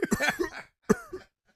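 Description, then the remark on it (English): A voice imitates a raspy, chronic cough: a rough hacking burst of several quick coughs, a brief pause, then a second shorter wheezy hack, fairly loud. “How about the best chronic cough? We'll go with General Grievous.”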